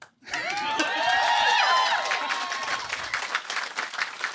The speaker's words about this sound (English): Don't applaud yet. It's not over.